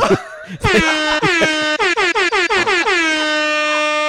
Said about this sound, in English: Look, we always like, oh, I should put that on my soundboard. What the fuck were you doing? Where you're like, I need a boat horn noise. It just came to me in a vision.